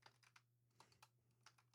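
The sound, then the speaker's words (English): Quick, irregular clacks of fingers typing in a chat on a computer keyboard, about seven sharp keystrokes in a short burst, quiet with a low electrical hum underneath and no voices. “All right, we need to get out of the bestie chat, otherwise we're not going to talk anymore. We're just going to keep typing.”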